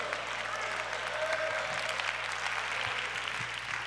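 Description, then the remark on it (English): Steady applause from a modest group of about 25 people clapping their hands, a dense, even patter of claps sustained throughout with no voices over it. “Well, that's about 25 people clapping their hands.”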